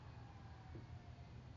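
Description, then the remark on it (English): A faint emergency siren wails far off in the early morning, its thin steady tone barely rising above a constant wash of low traffic rumble and city hum, with no one speaking. “That was the first siren of the morning.”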